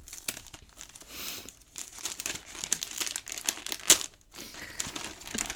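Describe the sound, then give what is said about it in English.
Steady crinkling and rustling of jungle-patterned wrapping paper being torn open and handled as a gift is unwrapped, with bursts of crackling and a few sharper rips over several seconds, no voices. “I like the jungle wrapping paper.”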